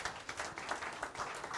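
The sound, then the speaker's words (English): An audience clapping together for the Lord as an offering during a Bible reading, a dense, steady wash of many hands applauding at an even level for a couple of seconds, with no voices standing out. “Someone give the Lord a clap, offering.”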